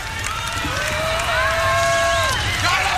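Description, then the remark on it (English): A crowd of veterans boos and shouts at President Bill Clinton at the Vietnam Veterans Memorial on Memorial Day 1993, overlapping voices forming a loud, sustained jeer with drawn-out tones that hold steady for about three seconds. “President Clinton is booed at Vietnam Veterans Memorial”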